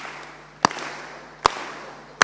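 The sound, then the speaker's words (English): Three sharp, loud claps ring out at a slow, steady pace, about one every second, as an audience in a church gives a slow drummer clap in unison for an arriving speaker, over a low background murmur. “Let's give him a slow drummer clap.”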